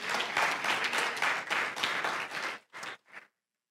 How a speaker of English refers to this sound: You can clap about that. That's all right. It's Sunday morning.